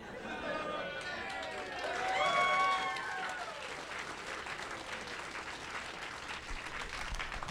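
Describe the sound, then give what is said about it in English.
An audience breaks into steady applause, a dense patter of many hands clapping, with a brief swell of whooping cheers partway through before the clapping carries on evenly to the end. “I hate that was applause-worthy.”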